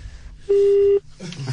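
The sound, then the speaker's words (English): A single loud, steady telephone call tone sounds for about half a second over a low background hum, then cuts off as faint, muffled voices start up. “Answer it and put it on speaker immediately and put this phone next to that one.”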